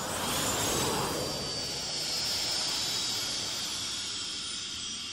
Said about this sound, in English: There's a soft whooshing sound and Spock suddenly rises into frame.